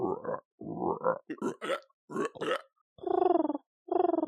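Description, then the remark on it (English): A voice imitates an owl or wood pigeon call: a series of low, breathy throaty hoots and warbles, ending in two longer, steady cooing notes, with no words spoken. “Oh my God, that was an owl noise, I'm guessing? That was awesome. I think it's probably closer to a wood pigeon, but yeah, that sort of thing.”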